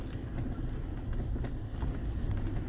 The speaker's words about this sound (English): So, a little bit of traffic here, heading into the college.